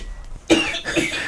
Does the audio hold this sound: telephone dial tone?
no